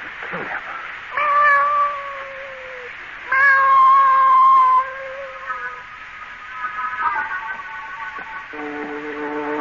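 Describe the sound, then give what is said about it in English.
A cat yowls in long, wavering cries, several drawn-out howls rising and falling, with short pauses between them and a lower moan near the end. “I'm bringing this cat in here.”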